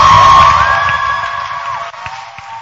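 A crowd cheers loudly, with whoops and sustained high-pitched shouting, then the noise gradually fades over a couple of seconds, with a few scattered sharp sounds near the end.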